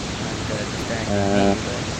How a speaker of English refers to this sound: Okay, and I'm getting a lot of white noise? Yeah, a ton of it.